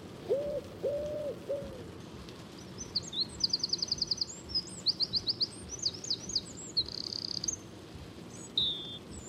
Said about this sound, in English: I listened to cassettes of birdsong I'd recorded that summer we spent house-sitting for Gordon's orchestra friends down by the beach.